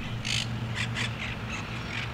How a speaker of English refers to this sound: Some may consider this a place of tranquility in the city. But then you hear the parrots.